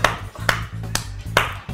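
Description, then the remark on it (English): A few scattered, sharp claps land roughly every half second as a performer finishes his set, sparse rather than a full round of applause, over a steady low hum. “Sees you guys clapping and just and he goes backstage for a second.”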